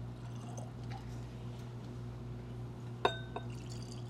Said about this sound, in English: And unlike the Russells, you can pour this without dripping it all over the place.